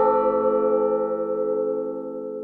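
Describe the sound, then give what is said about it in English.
A resonant bell rings out with rich, layered overtones that hum steadily and slowly fade over a couple of seconds. It is clear, with no voices. “The person look at the bells, and for a moment, they are just in peace.”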